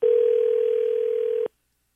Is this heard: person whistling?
no